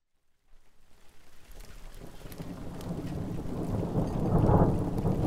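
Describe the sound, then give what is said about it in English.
A thunderstorm rolls in: steady rain patters while a deep rumble of thunder builds and swells louder toward the end, filling the low end without any voices. “A storm outside, but a crackling log fire is blazing in the hearth”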